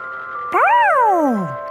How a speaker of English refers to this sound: Whoa! Even a polka dotted ice cream truck.